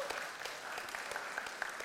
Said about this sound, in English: Yeah, thanks for your help. Give him a clap.